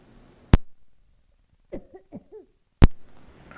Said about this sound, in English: Okay, so let me hang on. I've got to cough for a second.